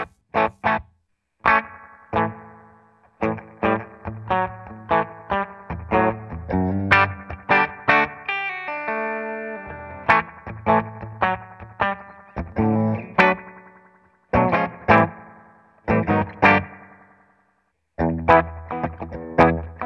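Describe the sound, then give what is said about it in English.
A dry electric guitar played through an analog chorus effect with the reverb turned off plays a run of strummed chords and picked notes with a shimmering sound, each attack crisp, with brief pauses between phrases and no talking. “I'm gonna turn the reverb off of this channel real quick.”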